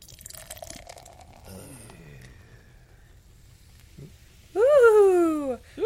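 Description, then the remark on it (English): Beer is poured into a glass. After a few seconds of quiet rustling, a loud gurgling pour rises steadily in pitch as the glass fills. “And here comes the pour.”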